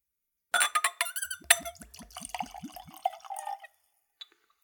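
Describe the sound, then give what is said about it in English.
Whiskey, poured neat straight from the bottle at room temperature, glugs and splashes into a clean Glencairn glass in a quick, rhythmic series of gurgles, followed by a brief high squeak of glass rubbing on glass. No talking. “Let's go for a pour.”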